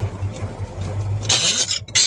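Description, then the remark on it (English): An old truck engine idles with a low, steady rumble, then harsh, raspy gear grinding cuts in loudly as the driver tries to get it into gear, breaking off briefly before grinding again. No one speaks. “Oh, we got it started. Oh, grinding the gears a little bit.”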